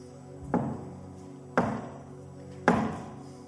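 Three slow, evenly spaced knocks on a door, each a solid, resonant thud with a short ring-out, clear with no voices.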